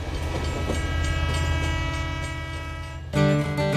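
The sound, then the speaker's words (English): A train rumbles steadily past with a dense, low roar, then near the end a loud horn blares with sustained harmonic tones over the rolling noise. “Whoa, reliable internet? On a train?”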